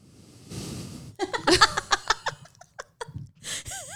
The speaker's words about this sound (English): blowing her nose on the microphone. And I don't have germs. That's why we have our microphones labeled.